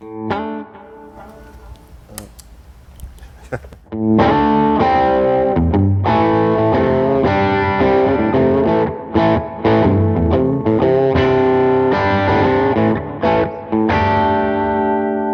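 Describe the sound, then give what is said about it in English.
After a few seconds of quiet noodling, an electric guitar kicks in loud through a BB preamp pedal, playing thick, overdriven sustained chords with a warm, gritty tone and no voices. “Now this one's a little thicker, the BB preamp.”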